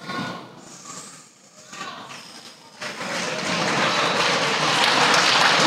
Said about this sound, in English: I don't need no applause.